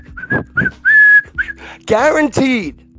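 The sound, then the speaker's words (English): Short whistled notes form a little melody, with one longer sustained pitch, then a voice cuts in with drawn-out vocal sounds. Fairly loud. “Somebody's walking down the street whistling, you know, whistling a tune, you know.”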